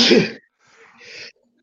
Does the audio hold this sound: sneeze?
yes